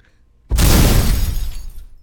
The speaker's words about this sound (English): Scary. More explosions.